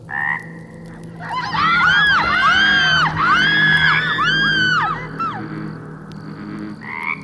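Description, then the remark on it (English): A bullfrog croaks loudly in a rapid series of deep, reverberating, rising-and-falling calls that run together for several seconds, then a final croak sounds alone at the end, with no talking. “When he returned with the rest of the on-duty officers, the giant frog was gone. They laughed him off. At least, they did until they heard a deep, reverberating”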